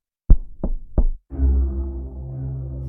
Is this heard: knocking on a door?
yes